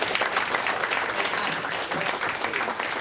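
An audience claps in a sustained round of applause, a dense, steady wash of many hands that holds at an even, fairly loud level throughout.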